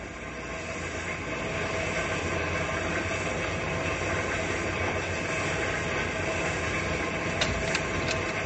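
A train rolls steadily along the tracks in a continuous, even rumble and rattle, with a few sharp clicks of the wheels near the end. No one speaks.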